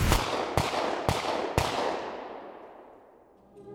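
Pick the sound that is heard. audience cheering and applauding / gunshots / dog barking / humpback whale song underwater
gunshots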